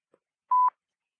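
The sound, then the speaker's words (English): A single short telephone time signal tone from the Industrial Research Limited Talking Clock: one steady, mid-high beep lasting about a fifth of a second, sounding alone after a faint click, with no voices, marking 7 hours, 55 minutes, 10 seconds. “On preferred tone, the time will be 7 hours, 55 minutes, 10 seconds.”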